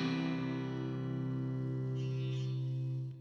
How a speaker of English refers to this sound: I love that little reverb part at the end of the end of the song. It's just my string vibrating some weird way. But I like it. It's actually one of my favorite parts of the song.